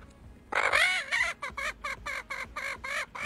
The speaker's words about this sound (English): She's about to go under her wings and tickle her. The chicken's laughing his butt off.